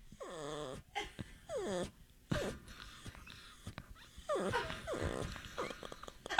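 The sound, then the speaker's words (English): A female dog in a radio studio lets out a few high, wavering whimpers in short bursts, then grumbles and growls low and rough, with brief quiet gaps between the sounds. “But she's being very polite right now, because normally at home she would be terrorizing that television. Yeah. Barking.”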